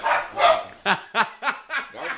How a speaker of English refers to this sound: The fucking dogs went nuts.